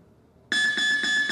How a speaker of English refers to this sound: And then they give a 30-second or a one-minute break. So that's it. We'll hear this beep first.